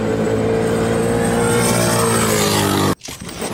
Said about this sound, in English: I go wide open in my 711 cubic inch twin turbo jet boat, Finnegan's Garage, episode 105.